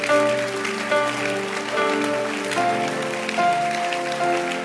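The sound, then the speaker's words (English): An audience clapping their hands in a dense, continuous patter over sustained musical tones, fairly loud and steady for the whole stretch, with no speech. “Clap your hands.”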